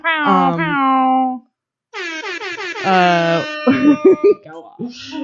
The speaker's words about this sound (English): Your air horns are especially bad. That's the point of them. I know. That's the point at this point.